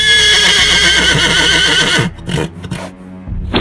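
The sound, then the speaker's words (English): A horse in a barn whinnies loudly and shrilly for about two seconds, its wavering cry sounding agitated and distressed, followed by a few scuffling thumps and noises. “and after a few minutes, he could hear a horrible commotion. It sounded as if the poor horse was getting tortured.”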